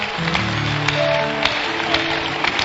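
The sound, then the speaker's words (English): An audience claps for Jesus in a steady, dense wash of applause, with a few sharper claps standing out and sustained low musical tones beneath. “Clap for Jesus.”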